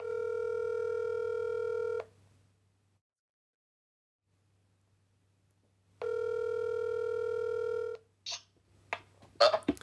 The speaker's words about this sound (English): So I think that's who we should call. I'll put it on speaker. Perfect. Here we go.